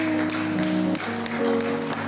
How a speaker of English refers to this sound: Should we clap for her? Let's clap for her.